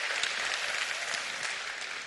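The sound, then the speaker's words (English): An audience at a worship event claps steadily for the AV team, video team and bands, a dense wash of many hands beating at once, sustained at an even, fairly loud level with no voices over it. “Clap for them twice.”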